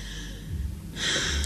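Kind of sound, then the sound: human body sound, heavy breathing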